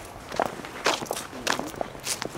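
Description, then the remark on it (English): Footsteps walking down stairs in a cemetery with gardens in the greater Boston area, on the way to Charles Sumner's gravesite, about six scuffing steps in a steady, unhurried rhythm, each with a crisp, gritty crunch at moderate volume, with no one speaking. “Yeah, we'll go down these stairs and we'll get cut through.”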